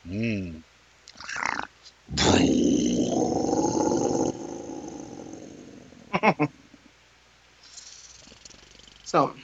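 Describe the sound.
A person makes a loud, gravelly animal-like growl lasting about two seconds, then it trails off into a quieter rumble. Brief bits of talking come before and after.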